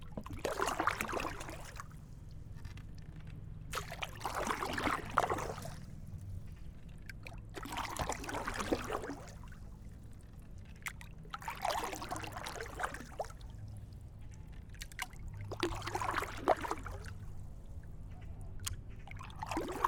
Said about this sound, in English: Just chilling with me, the boat and the lake.